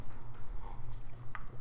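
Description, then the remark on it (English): Crunchy chewing on a Nature Valley granola bar, someone trying to chew it quietly, a few faint, irregular crackling bites over a steady low hum, with no one talking. “Oh, you're trying to chew that Nature Valley granola bar quietly that you chose to eat on the show.”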